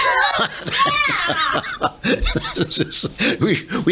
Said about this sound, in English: We had this clip of … screaming